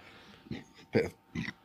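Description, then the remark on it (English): A belch, from alcohol gone down the wrong way, breaks up into three short, throaty bursts about half a second apart, with the middle one the loudest. No one speaks. “Nothing like a belch here in the primetime hour of Cave Crew Radio.”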